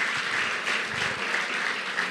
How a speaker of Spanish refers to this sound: Denle fuerte aplauso al Señor, porque es la verdad.